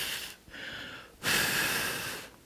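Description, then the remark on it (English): Soft, steady breaths blown out in long airy puffs, three in a row with short pauses between, fairly quiet, gently blowing on a tiny ember placed in tinder such as a bird's nest or shavings to coax it into flame and start a fire. “And then he would hold it up and fold it over, and he would start breathing in it.”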